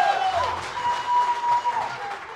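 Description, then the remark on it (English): An audience gives a standing ovation, applauding in a steady, dense wash of clapping, with cheering voices and a thin, sustained whistle-like tone riding on top throughout. “I've never gotten a white people standing ovation ever, so this is cool.”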